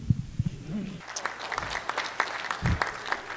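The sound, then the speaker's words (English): A crowd breaks into applause for a company, a dense patter of many hands clapping that starts abruptly after a brief low rumble and continues steadily at moderate loudness, with a few deep thumps underneath. “Applause, applause, applause. People are clapping for a company that has never shipped a game, that has self-admittedly never manufactured a single thing around pinball ever, that has not shown us a single mechanism”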